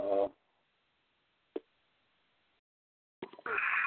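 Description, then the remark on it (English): A single sharp sneeze bursts out near the end after a long near-silent stretch, preceded by a brief voiced sound at the start and a faint click in the middle. “Bless you.”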